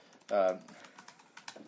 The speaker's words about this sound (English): In the context of community, by the way, all your typing is really loud.